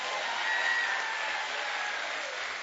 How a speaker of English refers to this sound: Come on and say, come on, give him a big hand clap, everybody.